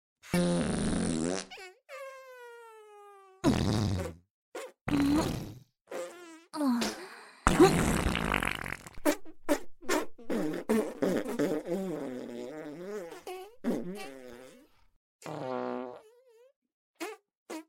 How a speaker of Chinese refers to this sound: 对，继续，继续放屁吧，我也会放屁的，你可要好好的。